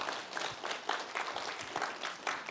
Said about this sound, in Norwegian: Vi gir deg en god klapp. Herlig.